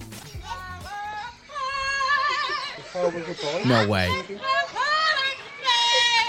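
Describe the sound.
A parrot at a British zoo sings a pop melody in warbling, gliding phrases of bright, shifting pitch, loud and continuous for several seconds, with a person briefly exclaiming early on.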